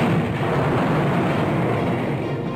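The planet Krypton exploding: a loud, continuous roaring rumble, dense and heavy in the low end, that holds steady for a couple of seconds without a sharp bang. No voices.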